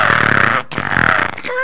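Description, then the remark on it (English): Several people imitate crow caws with their voices: two long, harsh, raspy calls in quick succession, loud, with no other talking. “The crows, let's make that sound just once again.”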